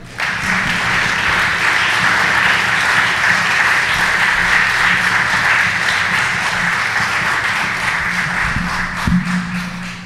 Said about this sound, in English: So please put your hands together for Heather Andreessen.